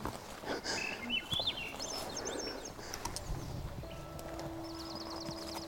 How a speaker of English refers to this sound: Having the birds sing.